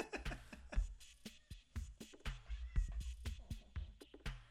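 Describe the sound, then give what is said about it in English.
A cat meows repeatedly in short calls, some rising into drawn-out, whiny cries, with a few quick bursts in between and no talking. “I love our cat so much.”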